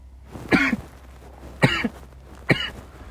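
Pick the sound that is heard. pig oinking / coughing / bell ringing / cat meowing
coughing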